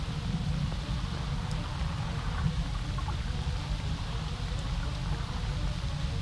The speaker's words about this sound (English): Oh my god. The water's moving. There's a little bit of wind now, but I think the water is just moving by itself.